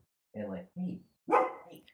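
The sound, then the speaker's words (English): A dog barks three times in quick succession, the last bark longer and louder, with short gaps of silence between. “But, sorry, my dog was going crazy.”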